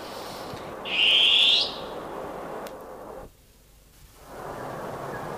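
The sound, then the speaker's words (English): A long-tailed cuckoo gives a single loud, shrill, slightly rising screech lasting under a second, against a steady background hiss that briefly drops away afterward. “Oh, beautiful long-tailed cuckoo.”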